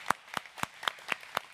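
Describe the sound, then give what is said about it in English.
A group at the Bridge claps hands to welcome first-time guests, in a quick, steady rhythm, about six crisp claps evenly spaced over a second and a half, moderately loud with no talking. “Can we welcome our first-time guest with a hand clap?”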